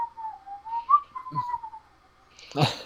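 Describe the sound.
Someone whistles a short, wavering tune, one clear pure tone that drifts gently up and down for under two seconds, then stops. A brief harsh burst of noise follows at the end.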